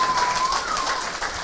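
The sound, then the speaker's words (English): Steady applause from an audience for an Olympic bronze medal in bobsledding, a dense, even patter of many hands clapping without pause at moderate loudness, with a faint thin tone running underneath. “Okay, you can applaud.”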